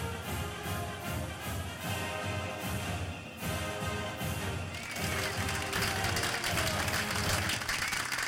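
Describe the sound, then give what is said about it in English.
A studio audience bursts into loud, sustained applause, dense clapping filling the room for several seconds and swelling slightly toward the end, with no voices over it. “And there we have the crowd. The in-studio audience.”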